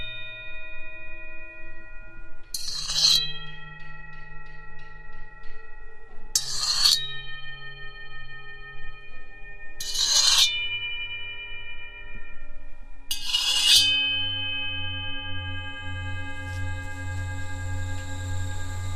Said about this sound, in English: Listen in to the sound with the angle grinder.